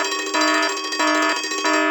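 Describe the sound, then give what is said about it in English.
A loud electronic alarm rings in repeating bursts, a bright metallic tone pulsing about three times in two seconds, with no voices. “Minutia alarm.”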